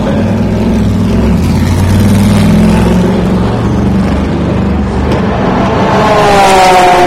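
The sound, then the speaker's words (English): A Corvette race car engine rumbles loudly, then revs higher and climbs in pitch as it accelerates away from pit lane, with steady background noise throughout. “And here goes the Corvette.”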